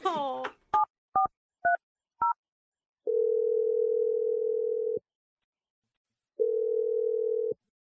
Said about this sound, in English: I'm just going to dial her number. Here we go.